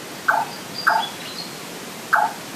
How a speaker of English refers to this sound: says it's a large-tailed nightjar.